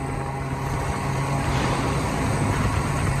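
A small moped engine drones steadily while riding along highway 275, with continuous road and wind noise filling the background at a constant, fairly loud level.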